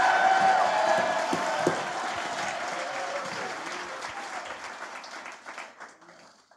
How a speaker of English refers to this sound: Go ahead. Take 30 seconds. Clap your hands.